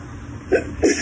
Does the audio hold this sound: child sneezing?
yes